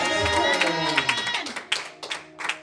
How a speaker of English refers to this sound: Somebody clap your hands, son of man.